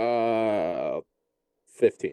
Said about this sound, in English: Oh, that wasn't a gasp. That was me clearing my throat